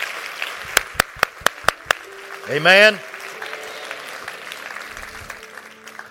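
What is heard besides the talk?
audience clapping hands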